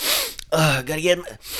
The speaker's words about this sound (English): What are you doing except coke? Isn't coke, man? Can't tell. Sniffing gas, man. Gasoline.